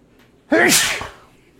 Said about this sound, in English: Oh my god! I have to sneeze. You fucking jinxed me. It was contagious.